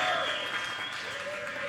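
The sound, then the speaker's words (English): A crowd roars with a raucous cheer while steady applause claps underneath, loud and sustained throughout, with a few high whistles riding over the noise. “How about a raucous feast cheer right now because we can't lose against the Lions?”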